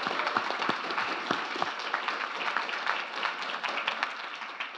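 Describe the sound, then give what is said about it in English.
An audience at a BAFTA event applauds a panel steadily for several seconds, many hands clapping at once in a dense, crackling wash with a few sharper individual claps standing out, and no one speaking. “Round of applause for my amazing panel.”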